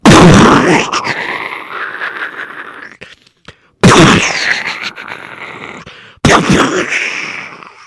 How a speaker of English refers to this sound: But the Russians, they kept pouring on the artillery. Those cannons kept firing.